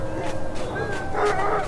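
sled dogs barking

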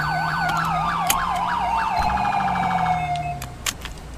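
car siren

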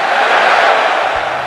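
crowd cheering and shouting

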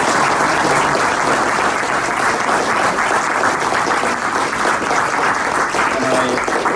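audience round of applause

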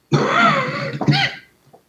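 cough

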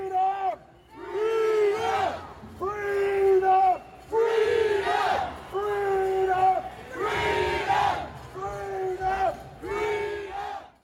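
protest crowd shouting

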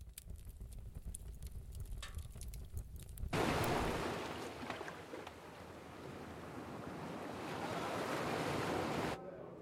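beach waves and surf

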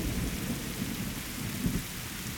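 rain

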